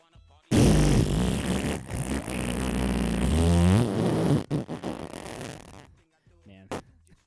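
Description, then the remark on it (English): A loud, drawn-out fart noise made with the mouth, a buzzing, sputtering raspberry lasting several seconds, followed by a few short spluttering bursts and quiet voices. “Let me hear your best fart noise.”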